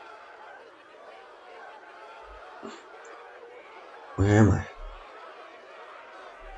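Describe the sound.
A steady murmur of crowd chatter from what seems like an entire city gathered together fills the background, with a louder burst of voices and laughter partway through. One person speaks briefly over the din.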